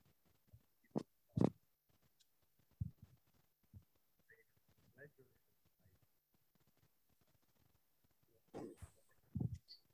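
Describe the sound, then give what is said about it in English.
A remote speaker's voice on a phone call breaks up over a bad connection, cutting in and out in choppy, garbled fragments, with a few louder bursts separated by near-silent gaps. “we can't hear you.”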